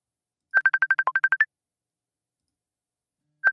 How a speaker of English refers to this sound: I didn't realize I lost you until it started ringing again.